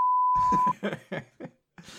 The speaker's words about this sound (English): So the judge bot is going to whir their arms around and go, beep, boop.